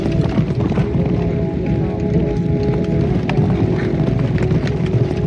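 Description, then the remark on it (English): A dense, steady thunder of galloping hooves rumbles on without a break, loud, as a pack of racehorses turns for home and pounds down the final furlong of the track with a low roar behind it. “And as they turn for home, the leader is Do, Re, Mi, Fa, Sol, La, Ti, Do.”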